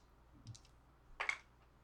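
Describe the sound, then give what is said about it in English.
New dice rattle briefly in an awareness and intuition roll: a light click, then a sharper clatter of dice tumbling onto a hard surface, coming up 14. Fairly quiet, with no talking. “14, and these are new dice, so there were no ones.”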